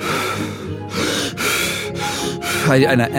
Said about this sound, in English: So I go back into the breathing method, and I just...